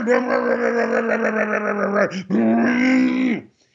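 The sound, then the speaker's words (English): A voice imitates a leaf blower being used to blow leaves, with a loud, steady, buzzing drone held for about two seconds, a brief break, then a second sustained whine that trails off. “And he starts blowing the leaves.”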